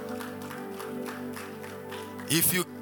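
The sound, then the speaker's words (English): A church audience claps steadily as a clap offering to the Lord, beneath sustained, droning keyboard chords, and a brief loud burst of cheering or a shout rises near the end. “Give the Lord a good clap offering, somebody.”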